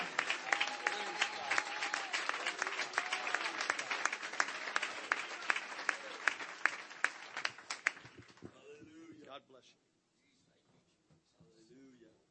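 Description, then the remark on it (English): A church audience claps their hands together in sustained, dense applause for about eight seconds, then it fades out, leaving a few faint murmurs of voices near the end. “And I wonder if we could come together clapping and lifting our hands.”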